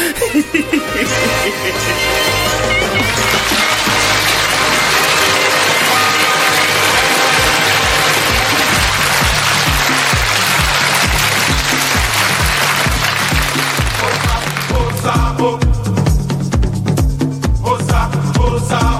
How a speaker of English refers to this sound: As the whittling guitar reaches a crescendo and the canned applause kicks in, we're immediately whipped into the image of some congas being bashed as the first act appears.